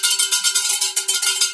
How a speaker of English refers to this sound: Boy, lots of winners bell today. Winner, winner.